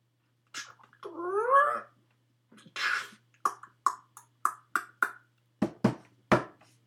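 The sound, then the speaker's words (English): A creaky bar door, a special door brought from Iceland, swings open with a long, wavering squeal that bends up and down in pitch, followed by a whoosh, a quick run of evenly spaced clacks and a few heavier thuds. “Barkeep, you have a very creaky door.”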